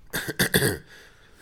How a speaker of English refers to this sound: I'll try. I've got a bit of a cough, so. Yeah.